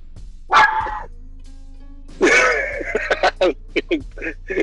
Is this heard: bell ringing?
no